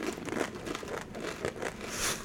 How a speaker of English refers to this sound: Can you hear the crunching?